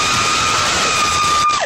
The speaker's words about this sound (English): A mom is checking out her sparkling new garage just as a stranger walks up the driveway. She's oblivious as the dude with the bushy red hair gets closer and closer. Then it happens. Oh my goodness, now that's a scream.